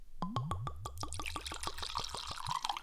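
Liquid glugs rhythmically from a screw-top bottle as it's poured, a quick series of about a dozen hollow gulping pulses, settling into a splashy trickle at the end.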